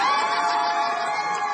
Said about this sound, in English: The crowd is all ages. Kids on their parents' shoulders, cheering teenagers, elderly photo takers.